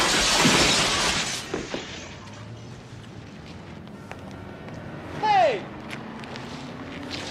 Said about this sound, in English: And then he, this guy calls the security, takes Axel, and he throws him right through a plate glass window.